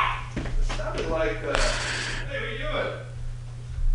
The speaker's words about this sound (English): Little dog's angry. Well, she is angry. Hey! Hey, there's somebody outside. No wonder she's barking, man.